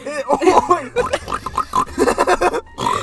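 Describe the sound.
Someone imitates a pig, making a quick run of nasal, squealing oinks and grunts, loud, with a brief pause near the end before one more.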